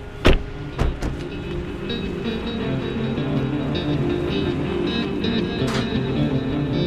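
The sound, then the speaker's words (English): A few sharp clunks and knocks at the start, like a car door opening and people shifting out, followed by a steady low mechanical hum with faint rustling and no talking. “We all get out of the car and walk to the front door of our destination.”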